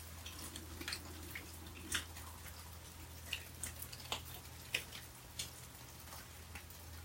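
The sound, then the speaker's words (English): Steady light rain falls with scattered drips and patters, irregular taps over a soft continuous wash and a low background hum, no voices present. “I'm opening up my pores, my very being, to this sound current of the rain.”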